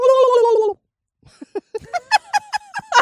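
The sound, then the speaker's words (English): A person in Central Florida imitates a turkey: a sustained nasal tone, a short pause, then a rapid, warbling series of loud gobbling bursts. “And we have multitudes of wild turkeys in the area.”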